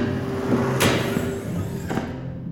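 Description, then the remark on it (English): An expensive chair hurled into a wall in a classroom slams with a loud, sharp crash, followed about a second later by a second, weaker thud as it lands, over a steady low background hum. “That's an expensive chair you just hurled into the wall.”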